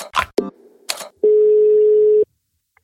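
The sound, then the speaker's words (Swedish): A few clicks and noisy bursts from a phone handset give way to a short beep, then one steady, one-second telephone ringing tone, clear, followed by faint clicks as the line picks up; a phone call placed from Karlstad. “jag heter … och ringer från Karlstad och spelar in en podcast tillsammans med Svennis Eriksson.”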